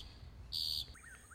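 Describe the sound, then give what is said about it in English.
A bird sings outdoors: a bright, sustained high whistle, then a few quick rising chirps, fairly clear over a low rumble of background noise. “During this episode, in addition to poetry and gongs, you'll hear sounds of nature, a thunderstorm, birds singing, frog choirs.”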